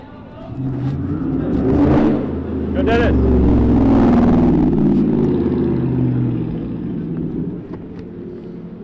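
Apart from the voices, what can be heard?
muscle car engine revving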